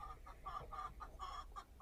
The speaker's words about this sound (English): Oh, yeah, they're clocking there. Boy, I heard that one. Chickens are clucking. That's not even the one that usually comes up here.